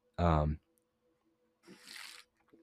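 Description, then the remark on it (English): A short, throaty gulp of someone swallowing water, followed a moment later by a soft, breathy exhale, with no talking. “Sorry, I had to drink some water.”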